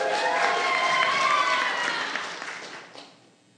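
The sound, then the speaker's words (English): A crowd claps and cheers to pick the winner of a flexing contest by applause, in a dense, steady burst of applause that gradually thins and fades out toward the end, with scattered voices mixed in. “All right, who's going to, okay, we need better applause than that.”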